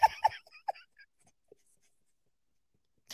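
A pen scratches across paper in a few quick strokes lasting about a second, followed by near silence with a faint tap.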